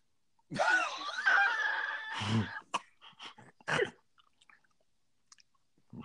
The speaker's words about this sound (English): Are you munching down on your peanuts? I am starving.